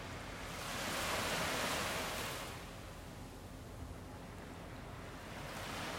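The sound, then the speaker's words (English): Ocean waves wash steadily onto the shore, a broad rushing surge that swells and eases over a few seconds, with a constant low roar beneath and no voices. “Tuning in to the sound of the waves.”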